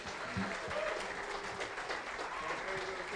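An audience at an evening church worship service claps steadily for a few seconds for the worship musicians, a dense, even wash of applause at full volume throughout, with faint voices and a few whoops mixed in underneath.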